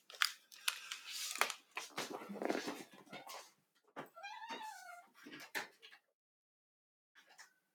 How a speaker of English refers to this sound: There's the cat. Oh, she's chopping. Yeah, Lulu. Here. Yeah. Aw, Lulu. I'm going to let her out.